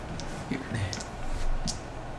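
The DM's dice, rolled for 3d10 necrotic damage in a tabletop role-playing game, clatter on a table in a few short, sharp clicks and rattles spread across a couple of seconds, with faint background voices murmuring underneath.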